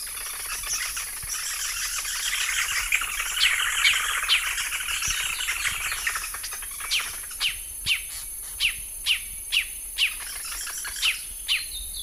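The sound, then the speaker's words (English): A white-headed woodhoopoe's rolling, chattering call: a dense burst of bird chatter that breaks into a steady series of sharp, evenly spaced notes, with no talking. “So we'll play the call now of a white-headed Woodhoopoo. It's kind of rolling, chattering.”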